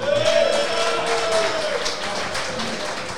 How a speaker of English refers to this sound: Joining us this week is one of the Parramatta greats. It's Pete Wynn. Everyone, ladies and gentlemen, round of applause for Peter.